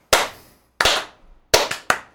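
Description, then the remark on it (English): People clapping in a loose, uneven rhythm: five sharp, crisp hand claps with short gaps between them and a quick double clap near the end. No one speaks. “Can I not be the only one clapping right now, please?”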